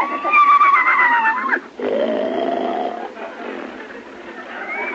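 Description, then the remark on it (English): A horse snores loudly while asleep, with a long rumbling, wheezy breath followed by a second drawn-out snore that fades into quieter rasping. “Doggone, he's asleep again.”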